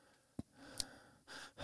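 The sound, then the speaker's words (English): Airy breathing right against the microphone, a few short puffs followed by a longer exhale, with no talking. “No, I'm just happy to know you're breathing.”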